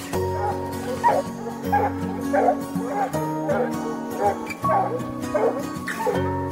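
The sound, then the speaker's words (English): A pack of free-ranging hunting dogs on a bear hunt barks and yips in repeated bursts, the calls overlapping over a steady low hum, with some higher-pitched whining cries mixed in. “Well, we was walking down through here, there's a bunch of dogs free ranging, and we looked down and seen the track, but they took off.”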